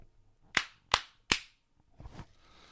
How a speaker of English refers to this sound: These are tiny claps, but that's because I turned my audio down.